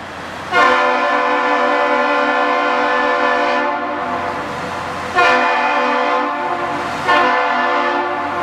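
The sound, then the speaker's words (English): Loud, chord-like locomotive air horns on the bridge of the ship James R. Barker, a 1,004-foot vessel gliding into the harbor, blare the Captain's Salute in three blasts: one long sustained blast, then two shorter ones in quick succession, each with a rich harmonic tone and a slight echo. No one speaks. “The bridge answers with its two air horns from locomotives.”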